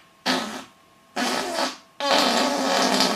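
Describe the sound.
A person imitates farting, producing three loud, buzzy bursts, the last one longest and sustained, with short pauses between them and no talking.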